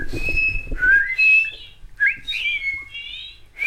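Someone whistles a series of short, gliding melodic phrases up close, bright and clear, with brief pauses between them over a faint low rumble.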